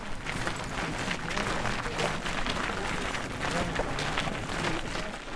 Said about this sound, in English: It's quiet as the walk down Redwater Pond Road begins, except for the sound of footsteps crunching in the pale yellow dirt.